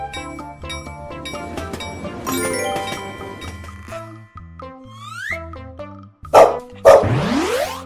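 Two sharp, loud dog barks close together near the end, following a stretch of bright, tinkling music with no one speaking.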